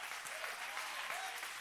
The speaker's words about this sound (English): Come on, clap your hands.